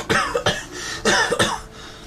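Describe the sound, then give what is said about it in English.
Four sharp, forced coughs in two quick pairs, loud, put on deliberately to act like someone who has the virus rather than natural. “That's acting like you've got the virus, because you got a cough of it.”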